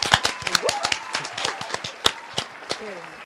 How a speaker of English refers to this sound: It's LSU's Angel Reese, and she's a champ. I'm going to give her a round of applause.